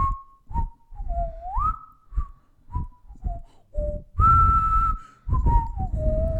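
Someone whistles a song melody alone, a string of short gliding notes that dip and rise with brief pauses between phrases, then one long held note before the tune steps downward.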